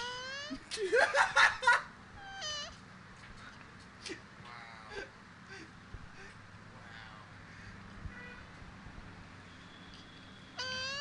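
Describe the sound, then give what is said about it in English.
Two mating turtles let out squeaky, cat-like cries: a loud cluster of wavering calls near the start, then softer, scattered moans and squeals over a low hum, with one brief exclamation. “What is that? Two turtles fucking.”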